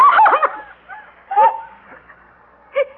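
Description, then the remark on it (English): A dog with a white patch on its face, running up to someone, gives a quick cluster of sharp, yelping barks, then two more isolated barks after short pauses, fairly loud with no one speaking. “That dog is running right up to...”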